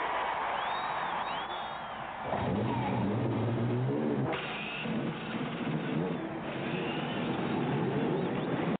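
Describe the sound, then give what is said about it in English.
Several loud race car engines roar to life together at the Indianapolis Motor Speedway on the command to start engines and rev hard, a dense, continuous mechanical din with rising and falling pitch over a noisy crowd background. “Ladies and gentlemen, start your engines.”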